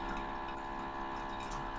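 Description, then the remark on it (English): Water dripping and trickling in a steady, continuous stream, fairly quiet, with a low hum underneath and no voices. “We got a nice drip happening.”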